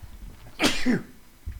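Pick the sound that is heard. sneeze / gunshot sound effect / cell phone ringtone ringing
sneeze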